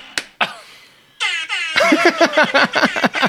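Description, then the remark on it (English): A loud rap-style air horn sound effect: two quick opening hits, then a long blaring blast followed by a rapid string of stuttering horn bursts, with no talking. “Oh man, right now is the perfect rap air horn time.”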